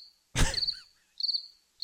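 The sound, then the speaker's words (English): Crickets chirp in short, rapid pulsing trills that repeat every second or so against silence, interrupted early by a brief louder noisy burst. No voices are present. “And I listen carefully, and all I hear is crickets.”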